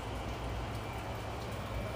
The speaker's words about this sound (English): The weather report says freezing rain. No driving recommended.